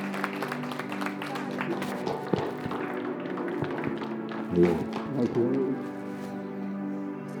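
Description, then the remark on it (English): An audience claps along, scattered sharp hand claps and taps ringing out over a steady sustained musical drone, with a louder burst of claps near the end and voices in the background. “If you ain't clapping your hands, you should be.”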